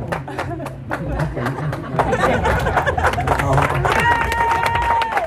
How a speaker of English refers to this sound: If you trying to clap me down, should I sit down? You trying to tell me to sit down?